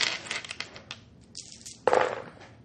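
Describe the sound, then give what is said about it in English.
Four dice, rolled for a clarity roll in a game, clatter and tumble across a hard tabletop in a quick rattling burst, then a second sharper clatter as they bounce and settle, with no voices. “Give me a clarity roll for 4 dice.”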